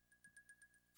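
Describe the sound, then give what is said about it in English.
A quiet, evenly spaced run of soft electronic ticks over a faint steady tone as the Nintendo Wii Shop Channel menu is browsed on a Wii console, ending in one sharper, brighter click as OK is clicked. “You're clicking OK. But the Wii.”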